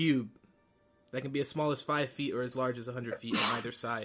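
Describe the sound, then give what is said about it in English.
One sudden, loud sneeze bursts out near the end while a person keeps talking steadily, the sharp noisy blast briefly cutting across the speech. “Excuse me. Bless you.”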